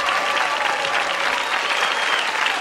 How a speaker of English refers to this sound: Why are you people clapping for him?